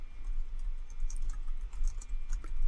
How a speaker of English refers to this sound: Oops. I'm just typing something.